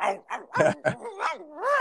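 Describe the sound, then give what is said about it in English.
A person's voice imitates a barking dog: a quick run of five or six loud yelping barks, ending in a drawn-out, rising howl-like whine. “Woo, woo, woo, helicopter. Dog.”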